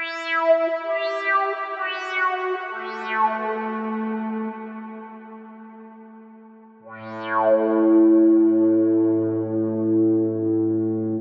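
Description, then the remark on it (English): Sustained guitar notes swell in softly without a sharp attack, layered with long reverb tails so they blur into a smooth, synth-like pad, with a deeper swell entering partway through. “you could use a volume pedal or even the guitar's volume control to create slower fade-ins for your notes. Add some reverb or delay, and the result can sound quite synthetic.”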